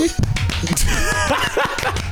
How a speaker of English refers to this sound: Those were real. Yeah, those were real hand claps, you know.